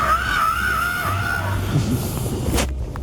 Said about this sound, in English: It's the middle of the night, just a homeless guy screaming on the streets. Could you imagine you're walking home, right, after a night at the bar, and this is what you hear? I would shit my pants.